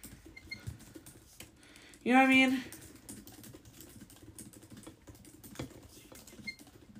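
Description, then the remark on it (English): Steady, quiet clatter of typing on a computer keyboard runs throughout, soft rapid clicks as someone types a search for previous music festival lineups, broken once early on by a brief high-pitched squeak. “I'm just like typing in to see the previous lineups of Coachella”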